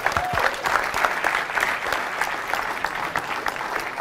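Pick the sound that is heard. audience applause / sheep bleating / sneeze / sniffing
audience applause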